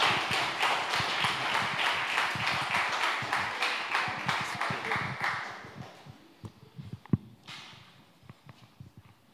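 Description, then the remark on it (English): A crowd claps steadily to welcome a man coming out to speak, about six seconds in a dense, even patter, then the applause thins out into a few scattered, sharper claps and taps before fading. “Let's give him a little clap, shall we?”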